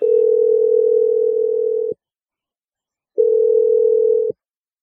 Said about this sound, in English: But here we go. I'm going to dial Christy's number.